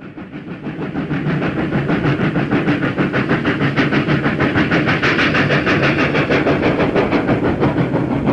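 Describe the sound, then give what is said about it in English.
A beautifully restored vintage Red Rattler electric passenger train runs at the 30th anniversary Hunter Valley Steamfest in 2016, its loud rumble swelling in the first second and then holding steady under a rapid, rhythmic clatter of wheels on the rails. “A beautifully restored Red Rattler proudly took part in the 30th anniversary of Hunter Valley Steamfest in 2016.”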